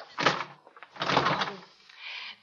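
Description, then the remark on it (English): A door closes shut and is left locked, with a couple of sliding, knocking bursts and a softer rattle after them, moderately loud, with no voices. “The door's locked. I can't get out.”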